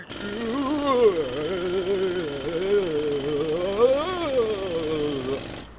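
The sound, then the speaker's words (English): A voice imitates an auger drilling a hole through the rock of a mountain, a continuous buzzing whine that rises and falls in pitch for about six seconds, loud. “You can drill a hole in the mountain with this, right through to where the mead is.”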